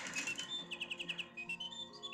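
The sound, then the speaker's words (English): A clockwork nightingale in a clock chirps a bright, high warble, breaking into a quick run of evenly spaced trilled notes before trailing off into softer twitters. It is moderately loud, and there is no talking. “The bird! The nightingale from the clock.”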